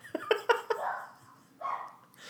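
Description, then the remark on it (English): A dog barks in a quick burst of four sharp yips, followed by a longer whiny bark, moderately loud with no talking. “I am going to go stop my dog from barking now.”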